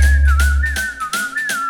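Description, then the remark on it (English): A clear, sustained whistled melody glides gently up and down over a musical backing with steady drum hits and deep bass, the whistle sitting prominently in front throughout. “Whistle. Whistle to the world and now I'm flying away.”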